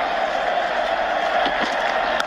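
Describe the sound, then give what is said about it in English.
A huge cricket stadium crowd at the Adelaide Test roars and cheers as Michael Hussey hits the winning runs for Australia. A steady, continuous, loud wall of noise, with a few sharper shouts and whistles rising briefly near the end. “Listen to the crowd.”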